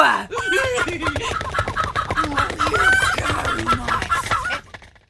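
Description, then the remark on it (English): A busy flock of chickens clucks and squawks continuously, many overlapping calls with a steady low rumble underneath, stopping abruptly near the end; used as a quiz clue for the film Chicken Run. “Well, if you said what you heard, you'll have hopefully come up with the answer, Chicken Run.”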